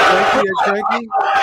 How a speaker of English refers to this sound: That's everyone in this room just booed you out of the building.